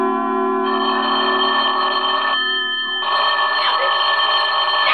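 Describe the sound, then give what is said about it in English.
A telephone rings loudly and continuously in the radio drama Sorry, Wrong Number, its bright, shrill bell tone sustained across the whole stretch with only a brief dip in the middle. “Stop ringing, will hello?”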